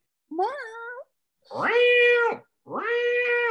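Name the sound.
cat meowing repeatedly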